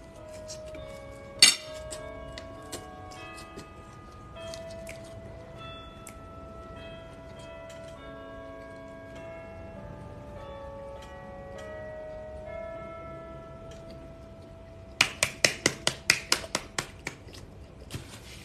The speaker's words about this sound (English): These bells are for you. These church bells are for you.